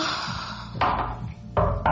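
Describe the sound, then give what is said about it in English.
Three dull knocks on a bathroom door, irregularly spaced, over a steady low hum, with the last two coming close together. “Someone knocks on the bathroom door, but we both ignore it.”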